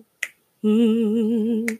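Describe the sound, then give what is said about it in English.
Two crisp finger snaps about a second and a half apart, made to accompany a song sung live, with a steady, slightly wavering low sung note held between them. “So I just snap my fingers like this.”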